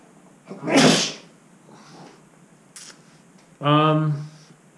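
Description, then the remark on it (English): A loud sneeze bursts out with a sharp breathy blast, then after a short pause comes a brief voiced, throaty sound, with quiet background noise in between. “I'm going to sneeze.”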